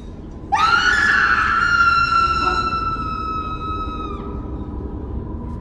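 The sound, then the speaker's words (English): In a film scene, a woman who is a spectator of a crime, a throat being slit in a crowded restaurant, lets out one long, piercing scream that holds a steady high pitch for several seconds before cutting off, over a low rumbling background. “The scream we hear in this scene comes not from Cecilia, but from an unnamed spectator of the crime.”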